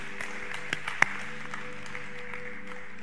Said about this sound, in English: Yeah, three of you clapped your hand. You should be clapping right now.